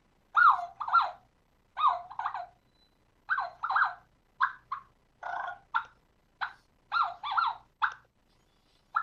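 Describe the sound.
A turkey hen calls in a siren rhythm: repeated phrases of swooping, wavering yelps, each with a drawn-out first note and quicker notes after, moderately loud, with no talking.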